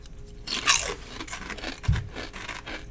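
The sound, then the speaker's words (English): Loud crunching of crisp red-pepper potato chips, with sharp bursts of brittle snapping and crackling as they're bitten and chewed, followed by a few softer crunches. “Those are really crunchy.”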